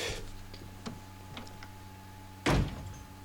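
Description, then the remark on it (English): A few faint clicks and rattles as a door is worked open, then one sharp, loud crack as the chain lock breaks off, ringing briefly before fading. No voices. “just opens the door and immediately destroys the chain.”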